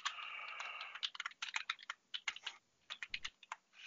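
Rapid keyboard typing as someone looks something up, a flurry of irregular clicks and clacks in quick bursts with short pauses between them, heard on its own without voices.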